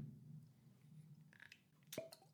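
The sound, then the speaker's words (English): Bourbon being poured into glasses: quiet glassy handling sounds, then one sharp, ringing clink near the end, all over a steady low hum with no talking. “Let's pour it.”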